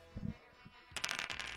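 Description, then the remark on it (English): A few soft, low knocks, then a burst of bright, rapid clattering as dice are shaken and rolled, tumbling together. Fairly quiet, with no voices. “are you ready with the dice?”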